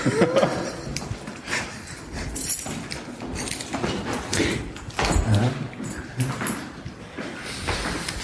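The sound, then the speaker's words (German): Keys jangle and rattle, with scattered metallic clinks and clicks like a key working a heavy old lock as a crypt is unlocked, a busy clattering stretch of sound with no talking. “Warte, hier habe ich den Schlüssel für die szenografische Gruft.”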